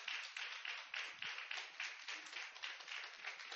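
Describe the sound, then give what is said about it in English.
A church audience applauds steadily, giving God a round of applause, a dense wash of many hands clapping at once with no pauses, holding an even, strong level throughout. “Give him a round of applause. Come on, a little louder, church.”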